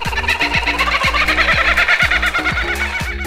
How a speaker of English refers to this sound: Coming in fourth place, the icon of icons, the kookaburra. Probably one of the most famous Australian birds out there. Kookaburras remain in good numbers, which is great news for these audacious sounding avians.